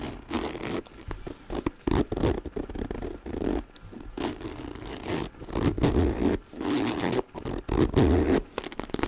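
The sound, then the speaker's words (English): A backpack zipper is pulled open and shut again and again, each stroke a rasping buzz lasting a second or two, separated by short pauses; no one speaks. “I like the sounds that the zippers make and the type of plastic that's used.”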